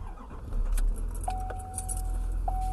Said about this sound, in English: I just turned the truck back on because it's getting cold.